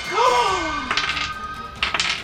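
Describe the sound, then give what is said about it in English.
A loud metallic shriek slides downward in pitch, followed by two bursts of harsh clanging and rattling metal impacts, with no voices. “there is the sound of metal clanging and shrieking.”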